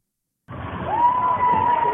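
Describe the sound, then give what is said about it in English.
After a brief silence, a crowd of fans of the home Jordan High School team cheers at a high school game: a dense, steady roar of voices with one sustained high-pitched yell rising above the noise and holding. “Now, that's just cheering.”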